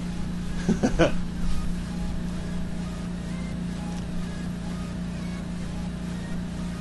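An air conditioner runs with a steady, low mechanical hum and an even whooshing drone throughout, broken only by a few brief soft knocks near the start. No one speaks.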